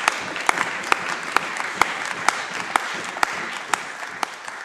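Steady applause fills a parliament chamber, a dense wash of many hands clapping at once, with a few sharper, louder claps standing out at regular intervals; no one speaks over it.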